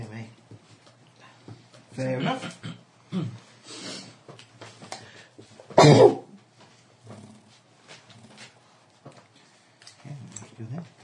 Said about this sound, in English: Do you know, not one of you said bless you, then.